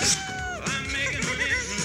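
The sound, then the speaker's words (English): A cat meows a couple of times in quick succession, drawn-out and wavering in pitch, moderately loud, with no one speaking. “I'm sure that thing's a cat.”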